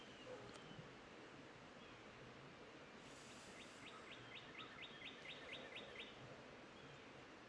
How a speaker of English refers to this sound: I don't know if you guys heard that bird, but that was beautiful. Beautiful bird.